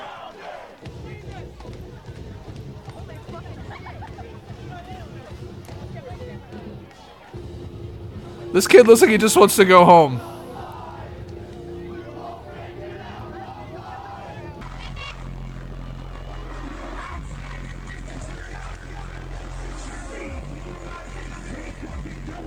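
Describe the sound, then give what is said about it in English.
A concert crowd murmurs, then erupts in a brief, loud burst of high-pitched screaming and cheering. Afterward a band plays steady, low, droning music, noticeably quieter than the crowd, while a voice speaks over it. “Listen how loud the crowd is, and then the band.”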